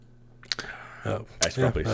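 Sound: clicking on a computer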